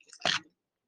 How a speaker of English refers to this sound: Can I just take a sip of water?